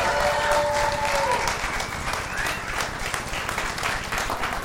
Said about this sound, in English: So why don't we give Pastor Chris an incredible round of applause this morning as he comes to bring the word.